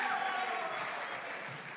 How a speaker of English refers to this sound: Can we give her a round of applause one more time?